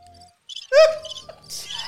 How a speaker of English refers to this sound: We need a song effect for crickets. We should.